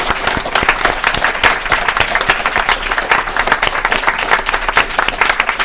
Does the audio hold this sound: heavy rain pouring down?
no